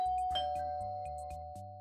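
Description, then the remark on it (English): A doorbell chime rings out in a steady melodic pattern, sustained bell tones over a repeating low pulse, fairly quiet and with no voices. “That's weird, because I thought I heard the doorbell.”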